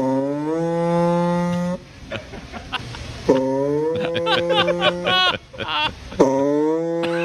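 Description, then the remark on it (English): A voice imitates the farting noises a customer reports their vehicle making: three long, buzzy, low-pitched drawn-out blats, separated by spluttering, crackly bursts, loud and steady throughout. “Customer states, their vehicle is making farting noises.”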